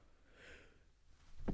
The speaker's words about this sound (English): Oh, Jesus. All right, listen, I don't have the fucking coronavirus. That was just a sneeze, okay? Let's all relax.